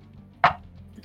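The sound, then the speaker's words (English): A die is thrown onto a table and comes up a 6, making a single sharp, woody clack that dies away quickly, with quiet background before and after and no voices. “I'm using different dice as well.”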